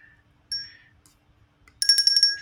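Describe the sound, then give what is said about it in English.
A bell chimes twice: a single clear ding, a brief pause, then a longer bright, rapidly repeated ringing burst. Fairly loud, with no talking. “Michelle, you got the bell, right?”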